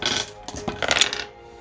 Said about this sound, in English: He's just rolling with one die and just adding it three times at a time.